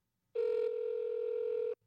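A single steady telephone ringing tone sounds for about a second and a half, clear, then cuts off abruptly. No one speaks.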